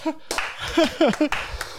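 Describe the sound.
Several sharp hand claps land at an irregular pace, crisp and fairly loud, mixed with excited voices and what sounds like brief laughter.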